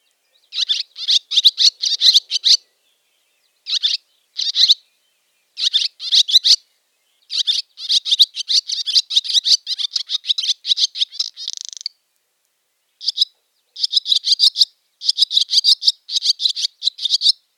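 Rapid, high-pitched twittering chatter from a barn swallow, delivered in bursts of quick chirps with short pauses between them, steady and fairly loud with no voices.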